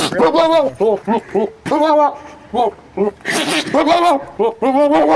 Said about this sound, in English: No, that's a dog. What? A dog, yeah.